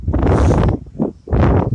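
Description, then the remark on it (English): Strong wind gusts roar and buffet the microphone outdoors during spoon carving, in three loud, rumbling surges, the middle one shorter and weaker, with brief dips between them and no voices. “wow, it's really windy.”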